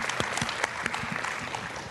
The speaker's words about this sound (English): Thank you so much. Just want to give applause to them for those great answers.